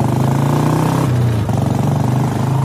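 A motorcycle engine runs loud throughout, its throaty pitch dipping briefly midway before climbing again as the rider revs and pulls away, setting off toward Pune, with no voices.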